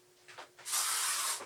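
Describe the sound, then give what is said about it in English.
A couple of short puffs from an aerosol bug spray aimed at a fly, then one steady, loud hissing spray that lasts under a second before cutting off. No one speaks. “Yeah, because you're spraying him with toxic waste.”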